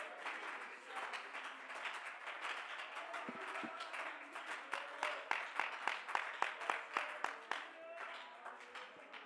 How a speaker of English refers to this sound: Oh, let's clap our hands and praise the name of Jesus right now.